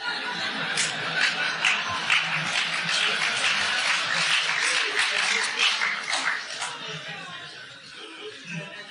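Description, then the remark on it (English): A crowd breaks into sustained applause mixed with scattered laughter and chuckles, the dense clapping filling several seconds before gradually thinning out toward the end. “First time I heard people applaud that I've got problems.”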